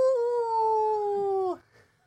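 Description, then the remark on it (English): A person imitates a wolf howl with one long, steady, slightly falling note held for about a second and a half, then cut off abruptly. The voice is loud. “It was a deliberate arson attack from Alexander Stewart, also known as the Wolf of Badenoch.”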